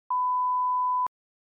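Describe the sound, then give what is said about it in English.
A single answering machine beep from an automated phone feedback service: one steady, high-pitched electronic tone lasting about a second, clear and fairly loud, starting and stopping abruptly with faint clicks, with silence after. “please tell us what you think of the Ethan and Jezza podcast after the beep”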